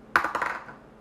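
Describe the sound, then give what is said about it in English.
Dice clatter across a hard table in a quick run of four or five sharp taps, tumbling and fading out within half a second, with no voices; a die rolled for a perception check during a tabletop game. “Can I get a die that doesn't roll”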